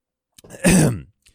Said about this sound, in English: Well, let me take a drink and clear my throat.